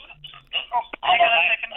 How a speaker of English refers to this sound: Hang on. Sorry, buddy. The phone got cut off.